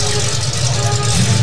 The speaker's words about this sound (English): Bye bye car. The noisy one. Very nice. Yeah. Stinky too.